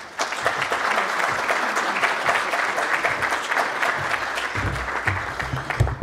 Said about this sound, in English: And with your applause, please welcome Dr. Ernest Wyszkiewicz.